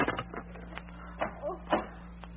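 A few sharp metallic clicks and rattles as someone unlocks a door with a key, followed by the door opening; fairly quiet over a low steady hum.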